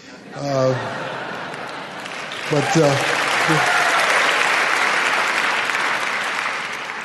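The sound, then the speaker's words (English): An audience breaks into sustained clapping that swells and then holds steady for several seconds, with a few brief voices and a chuckle heard just before and at the start of the applause. “That shows that you have really been listening to me for you clap on something like that.”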